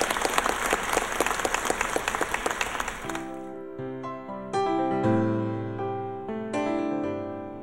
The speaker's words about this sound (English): So as a team, they've done a tremendous job. Let's have a big round of applause for everybody who's brought off this tremendous conference.